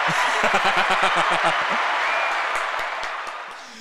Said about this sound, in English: Let's play the clapping one.